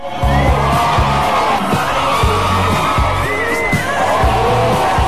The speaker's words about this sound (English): I thought they were cheering for me, so I wanted to, you know, I wanted to give them the moment to cheer for me.